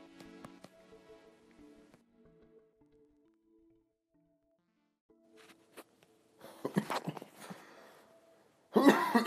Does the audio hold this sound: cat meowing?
no